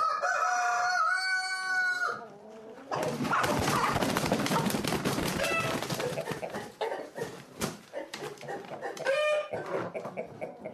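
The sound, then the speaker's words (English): A rooster crows loudly, then a dense, busy chorus of hens clucking and squawking fills the air, with another crow rising near the end. Championship chickens are being loaded into crates, a cock and a hen in each. “Put a cock and a hen into each crate just in case two cocks start fighting.”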